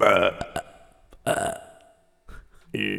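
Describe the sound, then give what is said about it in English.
A loud belching sound effect played from a soundboard button: a long, croaky burp, a second rumbling burp after a brief pause, then a short final belch near the end, with no talking. “No, that wasn't even a good burp.”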